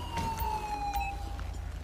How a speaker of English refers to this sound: Fuck it, I'll just turn the siren off.